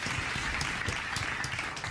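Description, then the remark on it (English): Applause from a group of people, a dense, steady wash of many hands clapping at once that holds an even, moderate loudness for about two seconds, with no voices. “You get claps for doing good.”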